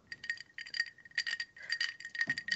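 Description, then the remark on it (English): Ice clinks and rattles against a cocktail glass in quick, uneven bursts of bright, ringing taps that carry on throughout, fairly soft, with no voices. “The ice clinking on your dad juice.”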